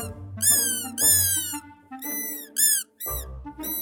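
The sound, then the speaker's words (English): A voice imitates an axodoggle, a made-up creature, with a run of about six high, squeaky yips: short, loud bursts with wavering pitch, separated by brief gaps and a low hum underneath. “Axodoggles make squeaky yips and are very friendly and cuddly.”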